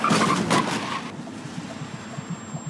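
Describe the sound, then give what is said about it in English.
A big blue 1976 Cadillac with white-wall Firestone tyres skids in a street with a loud, harsh burst of tire noise for about a second, then cuts to a low engine rumble that lingers as the car passes over a person lying on the asphalt. No one speaks. “He's wondering if he has skinned his knees when the car belonging to the businessman wearing the blue hat with a jaunty feather passes over him.”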